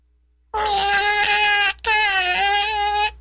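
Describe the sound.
A person's voice imitates a cat's meow twice in a row, each a long, whiny, drawn-out cry, loud, with only a brief gap between them.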